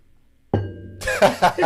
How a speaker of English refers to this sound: Bye, you want to ding the bell? You got to ding the bell now at the end.